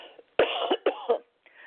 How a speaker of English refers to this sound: Just hold on for a minute. I got to have a little bit of a cough.